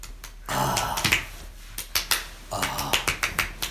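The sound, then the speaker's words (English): A voice mimics a slow golf clap heard from someone in a quiet restroom while urinating at a urinal: a breathy vocal sound, then a steady run of short, sharp, moderately loud clap-like pops at an even pace, with no one speaking. “And the more intense my piss is, the faster the golf clap.”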